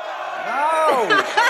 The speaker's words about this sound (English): Can we ask the crowd to tone it down a little bit, people? We're trying to record a podcast here. Can you just lower your volume a little bit? Hey, everybody, shut the hell up!